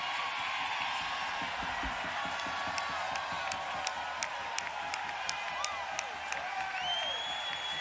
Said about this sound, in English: Ladies and gentlemen, my high honor, distinct privilege to introduce to you the team that's never lost a war, never lost a battle, the 2021 World Champions. Give them a cheer. Give them a cheer. Give them a cheer.